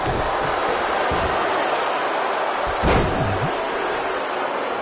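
A single heavy slam as the Hurricane's head is driven down onto the wrestling mat lands midway through a steady roar of crowd noise that fills the whole stretch.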